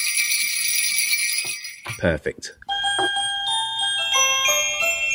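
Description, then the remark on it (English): Bright metallic jingling of shaken sleigh bells rings out continuously, a dense shimmering tinkle that briefly pauses as a voice says a word, then resumes with clearer ringing tones. “Do you want to give us your sleigh bells? Oh, yeah, I was about to reach for the sleigh bells.”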